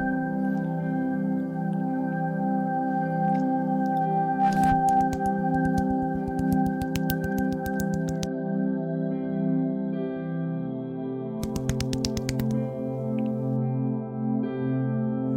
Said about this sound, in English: A flopping fish.